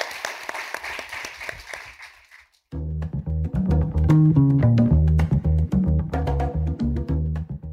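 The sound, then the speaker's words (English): An audience breaks into a round of applause for the panelists at the end of a panel discussion, a dense wash of clapping that fades out after a couple of seconds before loud, steady music kicks in. “So everybody give a round of applause.”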